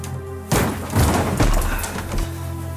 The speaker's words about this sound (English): Damn. I slipped and hit my head on the mirror. The glass broke when my head struck it.